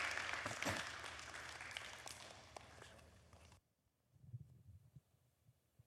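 Audience applause fills the first three and a half seconds as a dense, bright wash of clapping that cuts off abruptly, followed by quieter low rustling and a few soft footsteps.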